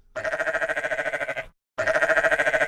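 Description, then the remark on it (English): Two long, quavering sheep bleats, each a loud nasal cry with a rapid wobbling tremble, split by a short silence. No one speaks. “Oh, that is sheep speak for, yes, save me too, please.”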